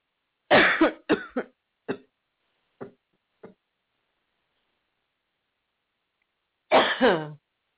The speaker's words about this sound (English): Sorry, people, for coughing in your ear.